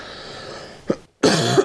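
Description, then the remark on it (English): A short, rough cough: a small throaty catch, a brief pause, then a louder, harsher burst of coughing with no talking. “Batman's got a bad cough.”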